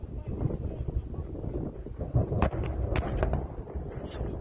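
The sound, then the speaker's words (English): A massive explosion at a Russian weapons depot: a steady roar of wind-like rumble, broken by several sharp cracking bangs in quick succession, like secondary blasts going off. “Massive explosion there.”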